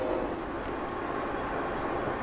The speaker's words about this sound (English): Looks like a long train. In Bremen, you deal with trains. I wait almost 3 minutes on the nose for the train to pass, then take off again on the way to the used trailer.